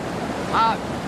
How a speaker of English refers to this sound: This is some of the 500 million gallons of water which cycles continuously here in order to keep the splash in Splash Mountain